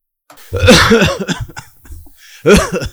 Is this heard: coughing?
yes